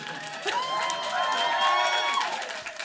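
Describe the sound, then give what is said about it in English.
An audience cheers loudly and continuously, a dense wash of raised, whooping voices with scattered claps mixed in, holding steady for a few seconds without any single clear speaker. “That will always get a cheer.”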